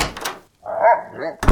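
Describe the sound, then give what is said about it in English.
A door is tried, giving a short thud, then a creaking, whining rattle, and a second heavy knock. Fairly loud, with no voices. “I think I found a door.”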